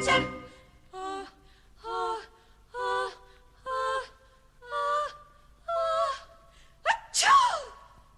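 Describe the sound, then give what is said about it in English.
A long buildup of six or seven drawn-out, evenly spaced gasping breaths ends in one loud, sharp sneeze, all from a single person with no other talking. “Gesundheit.”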